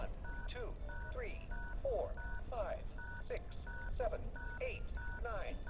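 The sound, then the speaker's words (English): A toy phone, after its green call button is pressed to call Grandpa, plays a quick run of evenly spaced dialing beeps, steady two-tone chirps repeating about twice a second, with a voice talking over them throughout. “Press the green call button to call. Oh, I see it's going to call Grandpa.”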